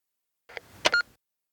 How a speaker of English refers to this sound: Maybe that's a relief to you as you pick up the phone and put in your coin and dial. Whenever you're ready, you can make your call.